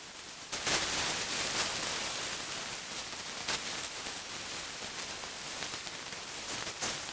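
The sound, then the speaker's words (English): A steady, hissing wash of running water fills the whole clip, broken by a few brief, brighter splashes that stand out every second or two. No voices are heard. “Water sounds take up the whole sound spectrum. Splashes, running water, showers.”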